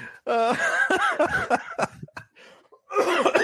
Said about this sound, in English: Oh my God. Oh man, sorry about the cough. I this is getting worse, man. I'm gonna have to end up going to a doctor.